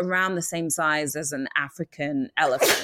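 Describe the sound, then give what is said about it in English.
A person talks steadily, then a single loud, sharp sneeze bursts out right at the end. “Bless you.”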